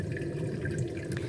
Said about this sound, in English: Now this is my go-to sound. It's the thunder in the background and just a little bit of that trickling water.